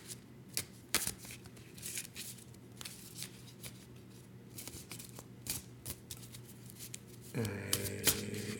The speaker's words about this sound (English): I'm having trouble shuffling.